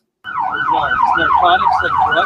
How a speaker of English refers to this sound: Hold on, wait for this ambulance to go by. One moment, if you don't mind. Quality siren.